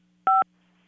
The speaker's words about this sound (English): Oh, you're clicking your phone.